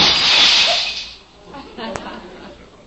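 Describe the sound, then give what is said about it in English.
A loud, bright crash of window glass shattering, a bright burst for about a second that fades into scattered tinkling pieces and a final small clink. “Be careful of the glass”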